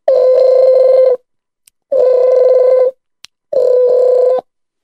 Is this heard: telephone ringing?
yes